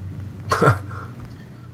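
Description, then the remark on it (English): A single short, rough throat clearing by a speaker about to read a question, fairly loud, with a harsh rasp and a brief low grunt, set against quiet hum with no talking. “Let me clear my throat.”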